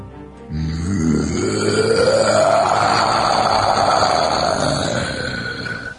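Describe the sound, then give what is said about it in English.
A voice imitates the roar of Randall the Destroyer, a winged creature, as he takes to the air with a snap of his wings: one long, loud, guttural cry that starts low, climbs steadily in pitch, and holds for about five seconds before tapering off. “Randall the Destroyer roars out as he takes to the air with a snap of his wings.”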